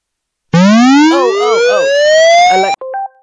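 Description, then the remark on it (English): A loud electronic alarm siren, played by an Alexa smart speaker's siren alarm skill, wails upward in a long rising sweep, with warbling tones underneath, then cuts off into a few short electronic beeps. “Alexa, open siren alarm.”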